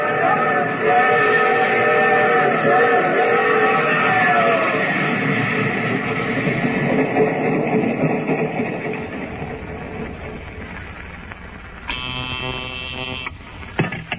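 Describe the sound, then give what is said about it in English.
A train grinds to a stop, a descending mechanical whine and steady rumble fading as it slows, then a short, loud buzzing whistle blast near the end. “Well, the train's halted, then.”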